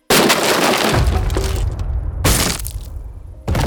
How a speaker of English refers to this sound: An upstairs window shattered. Glass tinkled and feet thumped across the room